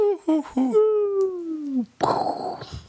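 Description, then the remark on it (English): A voice imitates the Wile E. Coyote cartoon falling whistle, as if going off a roadside cliff: a few short vocal bursts, then a long, sustained tone gliding slowly downward in pitch, ending abruptly in a loud, breathy, noisy burst. “Oh, you got to make the Wile E. Coyote sound on your way down.”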